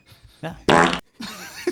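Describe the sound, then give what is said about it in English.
A loud, buzzy fart sound effect from a soundboard blasts for about a third of a second, surrounded by brief muffled voices and room noise before and after. “This is the new soundboard we're fucking with.”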